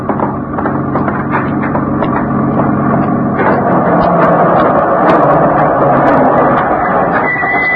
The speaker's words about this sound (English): Well, that's Nick's truck coming now.